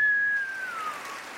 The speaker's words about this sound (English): Giving y'all a big round of applause.